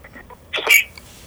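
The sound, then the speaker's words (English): A single short, sharp sneeze bursts out, a quick breathy hiss with a brief voiced edge, surrounded by near silence. “That sounded like a sneeze.”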